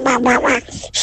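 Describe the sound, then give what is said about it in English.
A person does a vocal impression of a duck as the noise of their favourite animal, letting out a couple of loud, nasal, buzzy quacks in quick succession, followed by a brief breathy sound. “That's a duck. That is a very good duck.”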